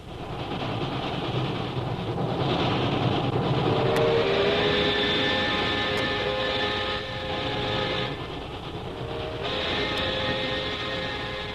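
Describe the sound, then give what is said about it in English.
A train bound for Calcutta rumbles steadily along the rails, a dense continuous roar with a faint rhythmic clatter and brief sharp metallic clicks, fairly loud, with no voices. “Several days later, we find Jungle Jim and Shanghai Lil on a train bound for Calcutta.”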